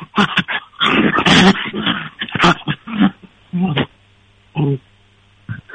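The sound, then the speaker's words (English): A dachshund-terrier mix dog growls and grumbles in uneven bursts while chewing a bully stick, with wet chewing noises between them, captured by a phone held right up to its mouth, with brief pauses of quiet. “That's with a bully stick in his mouth.”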